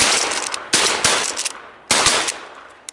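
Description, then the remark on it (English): Several loud gunshots from a crow hunt in the countryside crack out in an irregular sequence, each sharp blast trailing off in a long, hissing decay before the next shot. No one speaks. “That sound from one of the many, many, many crow hunt videos you can find online.”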